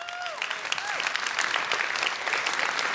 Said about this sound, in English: So let's just clap and praise him again.